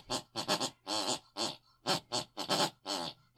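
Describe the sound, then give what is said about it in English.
An elderly woman snoring, heard through a bedroom wall: a quick run of rough, grunting, snort-like bursts, each a short raspy breath separated by brief gaps, fairly loud with no talking. “We listen to my mother snoring.”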